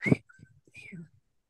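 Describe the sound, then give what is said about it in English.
A meadowlark sings a brief phrase of clear, sliding whistled notes in two short bursts, with a low murmur of background noise underneath. “Oh, that was Meadowlark.”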